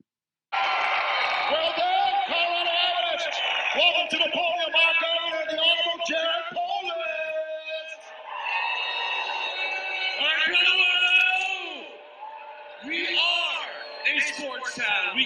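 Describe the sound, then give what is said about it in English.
A large crowd boos Jared Polis loudly and continuously as Mayor Hancock introduces him, many voices merging into a sustained jeering roar with scattered yells, easing briefly near the end before swelling again. “This is Jared Polis getting booed as Hancock introduces him.”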